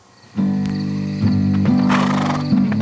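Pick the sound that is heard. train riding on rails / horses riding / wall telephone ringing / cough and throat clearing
horses riding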